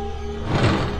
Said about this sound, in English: I'm going to seal these doors, but we'll be keeping an eye on you through those cameras up there, so don't try anything.